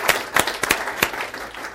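A small cheering section claps in a short burst of light applause, the sharp claps uneven and scattered, fading out after about a second and a half.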